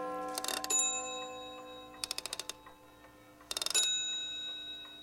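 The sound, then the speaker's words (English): A nearby clock strikes the hour with bright, ringing metallic tones, struck in three quick clusters of rapid blows, each leaving a sustained shimmer that lingers between bursts. No voices are heard. “And thus he remained until the nearby clock began to strike the hour.”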